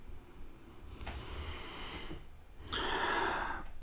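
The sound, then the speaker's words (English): Two loud breaths rush straight into the microphone, each a broad airy whoosh lasting about a second and a half, separated by a brief pause with no talking. “We just talked about me not breathing so hard, and then that's the first thing that I do.”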